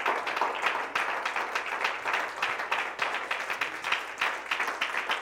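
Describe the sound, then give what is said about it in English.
A church audience claps hands unto the Lord in sustained applause, dense overlapping claps forming a steady bright wash with faint rhythmic pulses running throughout, with no clear talking over it. “Somebody clap their hands unto the Lord in the name of Jesus.”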